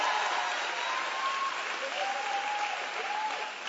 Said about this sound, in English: Give the first lady in the house a big hand clap for putting up with the pastor.